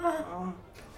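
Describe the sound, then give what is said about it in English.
A person voices a short, soft groan, imitating a character groaning as he gets up onto his elbows and knees, a low, drawn-out vocal moan lasting about a second before trailing off quietly. “Superman groans softly as he gets up”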